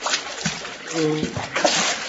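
Water splashes and sloshes in a steady, broken wash of noise as a man lying in the water is lifted and his face raised out of it, with a short strained voice-like tone rising briefly in the middle.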